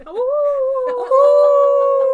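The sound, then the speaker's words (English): A person's voice imitates a howl, a sustained rising-then-steady wail lasting about two seconds, loud, with faint background chatter underneath. “Somebody start howling. We just did.”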